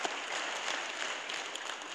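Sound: audience applause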